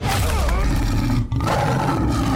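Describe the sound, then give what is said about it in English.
A loud tiger roar fills the whole moment, a deep rumbling growl with rising snarls that barely pauses once before surging on. “What a great Tiger.”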